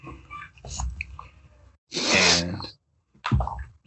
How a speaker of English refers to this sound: That sniffle was my intro.